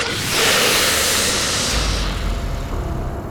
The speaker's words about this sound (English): He scrambled back along the temple's side, but when he turned the corner to the front, Marduk heard a familiar hiss.